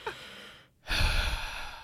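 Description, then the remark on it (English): A voice imitates the heavy breathing of a man sitting next to someone in a movie theater: a drawn-in breath, a brief pause, then a loud, rasping exhale, with no talking. “He's got his arm on my like arm stand and he's heavy breathing.”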